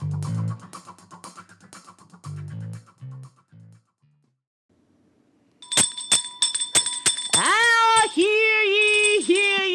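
A service bell, rung to call for more wine, is struck about half a dozen times in quick succession, bright and ringing, after muffled talk and a pause, then gives way to a warbling, sliding tone.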